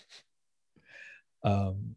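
On St. Patrick's Day, a man coughs and splutters after doing a shot of Baileys liqueur: a faint breathy puff, then a raspy gasping breath, then a louder, throaty, voiced hack that trails off. No talking.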